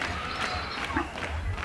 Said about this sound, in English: There's a lot of clapping. Yeah, it's a live album. The first album was a live album.